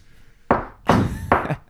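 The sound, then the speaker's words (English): Three solid knocks on a door from someone trying to get in, dull and thumping, spaced a little unevenly with short pauses between, each landing with a firm, resonant thud. “I hear a distinct knock from you, specifically.”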